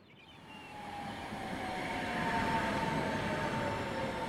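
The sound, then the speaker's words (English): A tram pulls away and gathers speed, a steady rumbling roar swelling gradually with a faint rising whine on top, continuous with no voices. “But as the tram started up, the thought of him wrapped itself around me all over again.”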